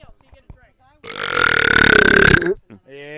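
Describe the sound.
A long, loud burp, rough and rattling, drawn out for about a second and a half, with brief quiet talking just before and right after it.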